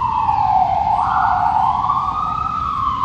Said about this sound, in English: I'll just wait for the siren to go.